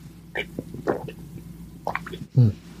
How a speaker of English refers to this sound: I'd like to thank Le Bleu for this molecularly perfect water that I drink on every episode of My Fellow Americans, Bula Vinaka.